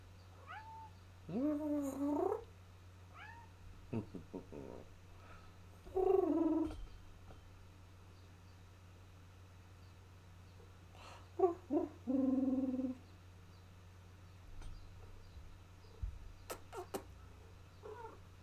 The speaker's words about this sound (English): So this is my cat, Fonzie. He wants to be on camera.